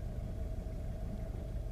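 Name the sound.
road traffic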